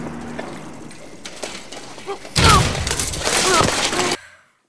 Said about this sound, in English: Listen closely for … crashing on the bike